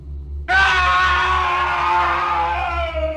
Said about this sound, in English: I screamed in horror, and the bunk bed began shaking violently.